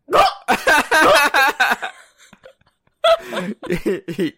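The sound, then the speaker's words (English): A person imitates a velociraptor screech with a string of choppy, strained vocal bursts, a shrill, gurgling run, a brief pause, then a second shorter series of squawks. “Yeah, you sound like a bird choking on a fish. That's probably what a raptor sounds like.”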